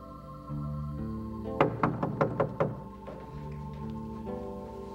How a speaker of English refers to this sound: but Peter kept on knocking.